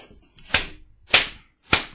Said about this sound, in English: What's that mysterious slapping noise?